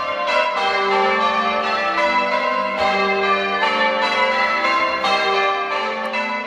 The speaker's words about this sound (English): one last touch of Mother England. Listen to the bells from the church in Great Finborough.